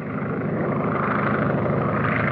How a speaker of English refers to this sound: a Universal Pictures title, with a little plane, and the little plane goes sputtering by, and that might be my... Well, it didn't sputter. It was a pretty... It's pretty well sputtery. Functioning plane for the time. But the sound is sputtery.